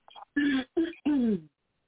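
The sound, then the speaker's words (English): A woman clears her throat, a quick faint rasp followed by three short voiced bursts, the last one a bit longer, with no words spoken. “She had to clear her throat on that one.”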